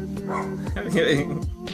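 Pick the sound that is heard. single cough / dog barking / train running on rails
dog barking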